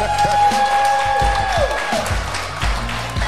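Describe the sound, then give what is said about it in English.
A small group claps for a few seconds, the sharp claps loose and uneven rather than a full roar, while a steady whistling tone runs through the first half. “Clap it up one time.”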